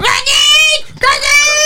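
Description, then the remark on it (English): A voice mimics a female peacock's screech: two loud, shrill, strained wails in quick succession, each under a second long, with a brief gap between them. “Like listening to these like female peacocks screech.”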